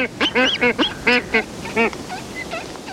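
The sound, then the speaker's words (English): Black-footed albatross calls: a rapid series of loud, nasal, honking cries, about eight in quick irregular succession, followed by a few fainter, shorter calls. “the black-footed albatross collects squid and masses of flying fish eggs with its long, hook-tipped bill”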